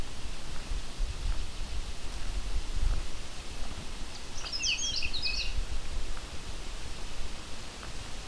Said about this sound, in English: coming up on another Canada warbler.